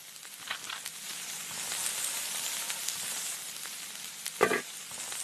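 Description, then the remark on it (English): A steady bubbling sizzle of porridge yam cooking in an aluminium pot as a woman stirs it at the Minawao refugee camp in northern Cameroon, with soft scraping stirs and a brief louder clatter near the end. No one speaks. “The aroma of cooking fills the air as a woman turns porridge yam in an aluminium pot.”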